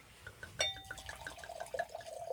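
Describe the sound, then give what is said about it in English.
A dark red wine is poured into a glass, starting with a bright clink of the bottle against the rim, followed by a steady gurgling stream whose pitch rises as the glass fills. Quiet. “I'm pouring you open hand.”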